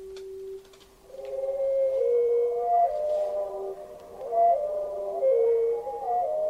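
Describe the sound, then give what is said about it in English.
A slowed-down hermit thrush song: a long low tone, then a series of gliding, flute-like whistled notes rising and falling in pitch, with brief spaces between them and no voices. “That's a hermit thrush's song slowed down.”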